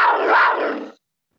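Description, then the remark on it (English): A cougar growl sound effect, played for the Washington State Cougars: one loud, raspy snarl lasting about a second, rough and breathy throughout, then cutting off abruptly into silence. No one speaks over it. “Which do you want the meow or do you want the growl? Let's be optimistic. Let's go with the growl.”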